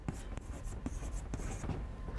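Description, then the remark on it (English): Quick, scratchy strokes of a pen dragged across a board while drawing a car, several short swipes in an uneven rhythm with brief pauses between them, with no voice over the sound. “My ability to draw cars is even worse than my ability to draw trains.”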